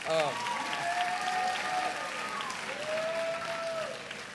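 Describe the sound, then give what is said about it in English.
Steady clapping from an audience at Baylor welcoming a speaker to the stage fills the whole stretch, with a few voices letting out drawn-out, pitched "woo" cheers over it before the applause thins slightly at the end. “That was a good woo.”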